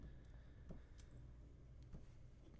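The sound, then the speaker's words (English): A few soft, sharp mouse clicks at irregular intervals, quiet, over a low steady background hum with no one speaking, as someone clicks back on a slow computer. “I'm clicking back.”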